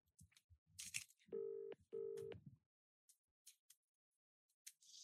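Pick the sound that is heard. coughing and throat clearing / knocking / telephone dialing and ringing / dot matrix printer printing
telephone dialing and ringing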